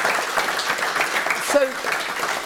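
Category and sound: crowd, audience applause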